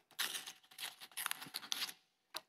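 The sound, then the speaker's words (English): Crinkly, crackling rustles of a foil package holding two Alka-Seltzer tablets being torn open, a busy burst of dry rattling snaps for about two seconds, then a brief pause and one last sharp crackle. “I need to open the package, right? Let's try it. So in the second one, we're gonna get the two tablets.”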